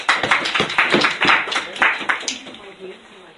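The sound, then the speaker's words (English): Audience applause for a guest speaker, a rabbi, at a breakfast lecture: a burst of many hands clapping at once, dense and fairly loud, then thinning out and fading over the last second. Faint voices murmur underneath. “Please give a warm round of applause to our guest speaker,”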